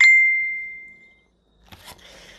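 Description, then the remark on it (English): A phone's message notification chime: one bright, clear ding that rings out and fades over about a second, followed after a brief silence by soft rustling and handling noises. “Sorry, I've been getting messages on my phone.”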